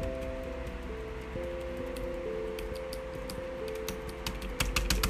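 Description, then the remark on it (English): Light, clicky typing on a new, colored computer keyboard: scattered keystrokes at first, then a quicker burst near the end, over a steady low electrical hum. No one speaks. “So I have a new keyboard.”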